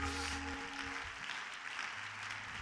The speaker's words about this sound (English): Clap your hands unto the Lord if you're glad to be in God's house one more time.